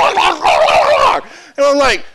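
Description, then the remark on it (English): A person imitates dogs barking at each other: a long, rough, snarling stretch, a brief gap, then a shorter, higher, whining bark that trails off. “Because it's like we're having a great day, and then all of a sudden, I don't know if I said something or she said something, but we were like two dogs in the yard.”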